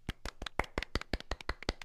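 Someone crunches a chip: a quick, uneven series of about a dozen sharp, crackly bites and snaps, fairly loud and bright, with no talking.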